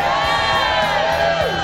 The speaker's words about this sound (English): Wow, that's not an enthusiastic crowd there. That's got the going through the motion sound to it.